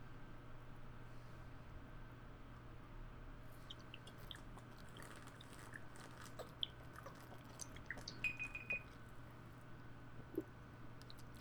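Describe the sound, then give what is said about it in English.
People drink from bottles: soft wet swallowing, lip smacks and small clicks, quiet and irregular, over a steady low hum with no talking. “Bottles to the lips.”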